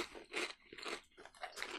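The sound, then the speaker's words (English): Crisp, crackly crunching of someone chewing a teriyaki chicken flavoured snack, with several uneven bursts of bright, noisy bites over a couple of seconds and no talking. “You got a bit of that teriyaki sweetness. Yeah. And like a subtle chicken taste, which is nice.”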